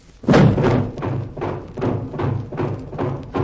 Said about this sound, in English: Hey, we're trapped. Steel shutters over all the doors and windows.